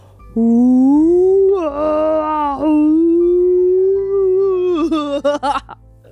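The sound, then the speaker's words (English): A person's voice imitates a whale call: one long, rising and wavering moan that swoops up and down in pitch, then ends in a few broken, squeaky bursts. “And who doesn't love to try to make a whale call every now and again?”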